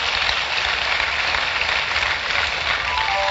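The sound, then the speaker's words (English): An audience claps for Jesus in a dense, continuous wash of applause that holds steady and fairly loud for the full few seconds, with no voices rising above it. “Clap for Jesus.”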